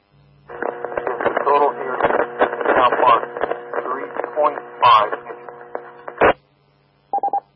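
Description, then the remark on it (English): A narrowband radio transmission carries a voice with a steady low electrical hum running beneath it, followed after a brief pause by three quick electronic beeps. “Okay, you got a bit of a hum on your signal.”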